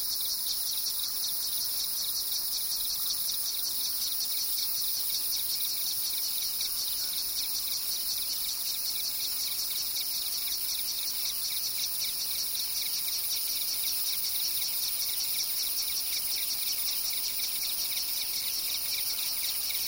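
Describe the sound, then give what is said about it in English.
A dense, steady chorus of crickets and cicadas chirping, humming and buzzing in overlapping pulsing, phasing rhythms in the lower valleys, continuous, with no voices or other sounds breaking through. “In the lower valleys, we always heard crickets and cicadas. They hummed and buzzed and made complex phasing rhythm patterns.”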